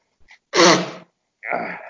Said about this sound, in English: Well, I'm going to sneeze. Oh, where's my tissues? Okay, I'm just sneezing, young man. Give me a minute.